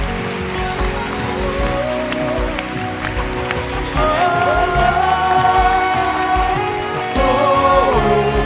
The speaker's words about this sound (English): Anybody who did not respect you, as you become a center leader in the church, a center leader in the church, your honor and respect, clap your hands and receive honor for your life.